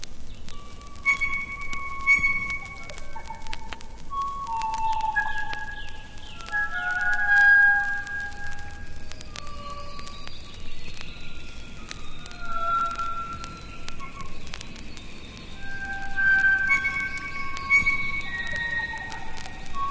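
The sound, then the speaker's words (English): A blue-wattled bird of the North Island calls in a slow series of rich, clear, pure organ-like and bell-like notes at varied mid and high pitches, spaced unevenly over a steady soft background hiss with no talking. “Its delightful call includes a variety of rich organ and bell-like notes.”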